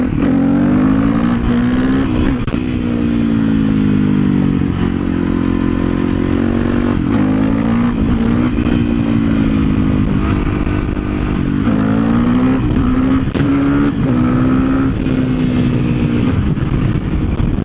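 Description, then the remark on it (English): A motorcycle engine roars, revving up and down repeatedly in surging bursts as it accelerates and eases off while the rider does wheelies, with no talking. “Those were the most pathetic wheelies. I'm sorry for that. That is actually the first time that I've wheelied this bike.”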